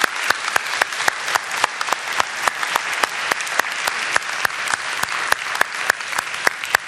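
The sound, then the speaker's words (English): An audience applauds steadily for several seconds, a dense wash of hand claps with sharper individual claps standing out, sustained without any talking. “And so, you did good, guys, and I would just like us all to clap the neighbor next door who was involved in it.”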